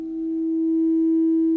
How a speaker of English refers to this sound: listening beyond the sounds of my voice and the singing bowls.